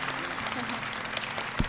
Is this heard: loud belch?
no